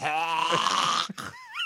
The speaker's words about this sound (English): Good burp on me. I got to keep all of my tummy juice inside of my belly.